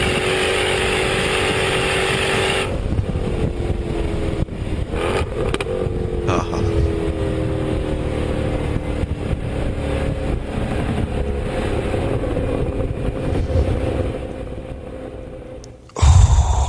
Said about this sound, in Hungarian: Egy igazi lustán forgó paraszt V8 automata váltóval. Nyilván 260-ra.